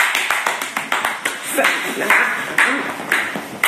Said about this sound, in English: Fucking slow claps to you, sir. Yes. Slow claps. Yes. Slow claps and slow grinds